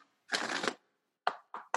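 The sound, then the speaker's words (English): A deck of tarot cards is shuffled: one longer riffling burst, then a pause and three quick, sharp snaps of cards being bridged and tapped together. “Let me just shuffle them a couple times.”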